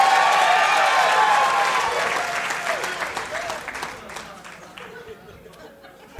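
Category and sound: crowd, audience cheering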